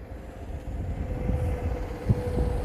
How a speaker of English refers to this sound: Of course, this big ass truck has to come over here. He has to come over here.